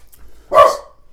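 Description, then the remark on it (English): A dog lets out one sharp, loud bark at random knocking outside, a short burst after a moment of near silence, with no talking. “The dogs just hear random knocking outside and they all go bananas.”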